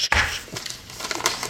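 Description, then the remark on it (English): A short burst of a paper list being crumpled and thrown away, crisp crinkling and rustling noises over about a second and a half with no talking. “I don't even take this list and throw it away. Poof.”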